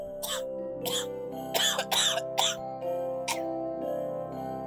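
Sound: person coughing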